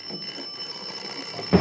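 A doorbell rings without a break, its button held down by a thumb: a steady, high, buzzing metallic tone held for the whole moment, with faint low rumbling underneath and a short thump near the end.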